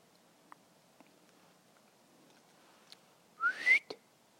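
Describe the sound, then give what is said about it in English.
A person gives a brief, breathy whistle to call a dog, a single rising note wrapped in rushing air, preceded by a few faint scattered clicks in an otherwise quiet outdoor setting. “No, I'm no good at whistling.”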